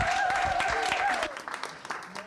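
An audience claps together in a dense, crackling burst of applause, with a sustained whistle-like tone riding over the first second before the clapping thins out and fades.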